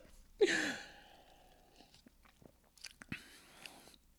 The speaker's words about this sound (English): Let me try one more sip.